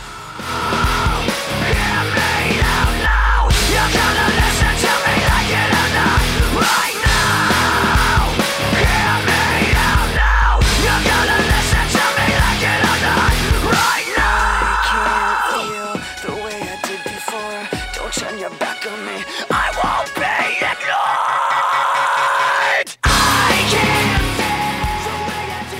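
A loud rock song with heavy pounding drums, dense distorted guitars and screamed vocals; the track thins into a sparser passage midway, briefly cuts out, then crashes back in at full force.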